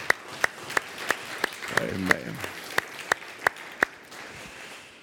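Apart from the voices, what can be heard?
audience applauding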